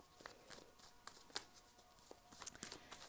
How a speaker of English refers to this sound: So let me shuffle the tarot mucha. I will get into your reading.